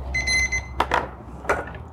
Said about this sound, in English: Oh, no. Oh, no. Everything's beeping.